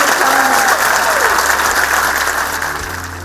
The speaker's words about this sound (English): If you would just join me in a massive round of applause.